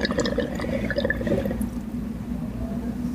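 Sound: water bubbling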